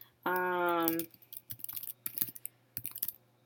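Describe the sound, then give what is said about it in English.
A short hummed vocal tone, then typing on a computer keyboard: a quick, irregular run of crisp key clicks lasting a couple of seconds. “You guys are going to hear me clicking, like, typing here for a sec.”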